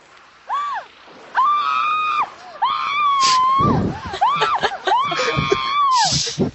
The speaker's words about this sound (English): Yeah, she spends most of the time just screaming. And, you know, here's a sample of one of her finer moments.